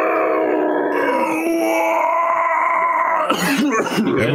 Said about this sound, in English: And with the horrid screams of the damned